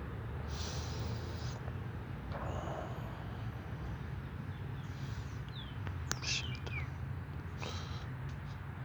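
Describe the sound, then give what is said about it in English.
A bird gives a few short, high calls outdoors in Miami, standing out briefly over a steady low rumble of traffic or passing trains. “Wonder what kind of bird that is.”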